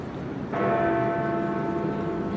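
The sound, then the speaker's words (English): Big Ben, the clock tower bell in the Elizabeth Tower at Parliament Square, London, strikes once at exactly 6 o'clock on a very cold Tuesday evening, its deep, resonant tone ringing out and sustaining over a steady outdoor background hum. “I'm in Parliament Square, it's a Tuesday evening, it's very cold, and looking up at Big Ben, well, as you can probably hear, it is exactly 6 o'clock.”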